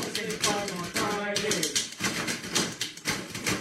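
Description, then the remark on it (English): Typewriter keys clack in a steady, rhythmic, musical pattern of sharp taps, played as music by a typewriter orchestra, with a voice sounding underneath in the first second or so. “There's a whole album of that by the ….”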